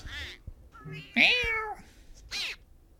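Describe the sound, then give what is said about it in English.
A black cat in the cartoon Donald's Lucky Day, blocking Donald's way, meows several times in short, rising-and-falling calls, the loudest one in the middle, with no talking. “And what do we have? Black cat.”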